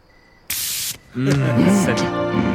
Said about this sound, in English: this is more Troy being insensitive as we see him spraying her mouth